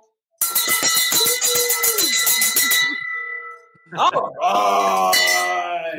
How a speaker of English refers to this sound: You guys, get the bell. Hold on. Here we go.